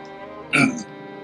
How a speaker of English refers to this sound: I didn't say anything. I was suppressing a cough.